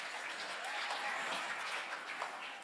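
A crowd applauds in a steady, dense wash of clapping that holds an even level for a few seconds, with no voices standing out.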